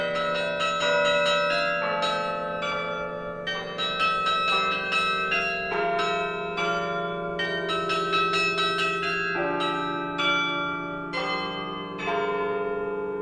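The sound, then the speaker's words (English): Church bells in Chicago peal in a steady, overlapping sequence, each strike ringing out with a bright metallic tone and long shimmering decay, loud and continuous with no voices present. “it's kind of a throwback to the old days of bells and bell ringers”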